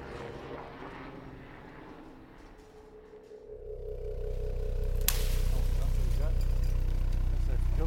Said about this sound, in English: Right, there's a boat coming towards us. So two boats should pass port to port.